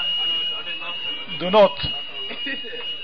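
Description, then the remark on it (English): A fire alarm sounds continuously, a steady high-pitched tone holding throughout, with a brief burst of voices and a short thump partway through. “Sisters as well, they may go to towards the exit door just in case the situation is being investigated at the moment, whether this is a false alarm or not.”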